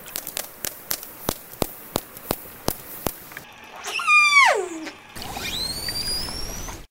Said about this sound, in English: Let me play first the orca, the killer whale.